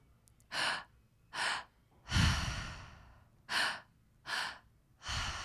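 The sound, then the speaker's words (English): Loud rhythmic breathwork breathing, belly and chest inhales and exhales, in a steady rhythm: short sharp breaths repeat about once a second, broken by one long, drawn-out sighing exhale partway through. No one speaks. “And just breathing in this triactive way for about 1 minute left.”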